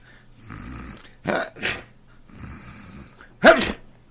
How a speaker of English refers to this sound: Gesundheit.